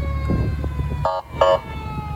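Emergency vehicle sirens give two short, loud whooping blasts over a steady low engine rumble, with no talking, as dozens of fire trucks, police vehicles and tow trucks drive down South Main Street in Findlay on New Year's Day, looping around Blanchard Valley Hospital in a salute to healthcare workers and first responders.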